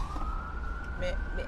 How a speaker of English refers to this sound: So, I'm hoping that ambulance didn't kill this whole story, or maybe I'm hoping it did.